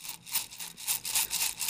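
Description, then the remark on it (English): About 195 coffee beans rattle and clink inside a container as it is shaken in quick, steady bursts, a bright, gritty clatter repeating about four times a second with no voices. “How many coffee beans do you think that is?”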